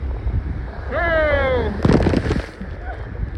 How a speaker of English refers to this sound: Oh! And it happened again. This is live. It doesn't get no better than this. The ocean got us again. Wow. We got caught two times. So just to let y'all know, if you look at me, I'm drenched.